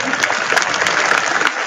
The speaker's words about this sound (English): So what? Who are we applauding here? That's what I want to know.